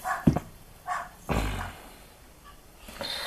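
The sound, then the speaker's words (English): A few household dogs bark in short, irregular bursts, a handful of sharp yaps and woofs spread across a few seconds, fairly quiet, with no one talking. “And your dogs sound like have some thoughts on the subject.”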